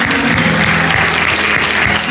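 An audience at a Christ Church Charlotte service claps hands to the Lord in a loud, dense, continuous wash of applause, steady for the whole stretch with no voices standing out.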